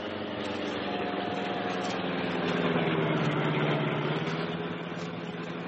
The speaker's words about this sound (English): We'll swing off the road and drive toward the shore.